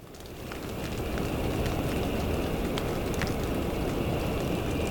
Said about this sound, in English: Hey guys, I think it's starting to get a little nutty here. I really feel like I'm hearing wind and rain.